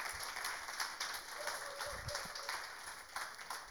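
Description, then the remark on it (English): An audience claps steadily for a few seconds, a dense, even patter of many hands with no pauses or cheering, fairly soft overall. “In the yes, clap for him.”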